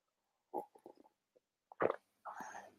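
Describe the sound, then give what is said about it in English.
Someone sips tea: a few soft wet mouth clicks and a swallow, then a louder slurp followed by a longer breathy, airy mouth noise. No talking. The microphone is closer to the mouth than usual. “I'm going to take a sip of my tea really quick. So mouth sounds.”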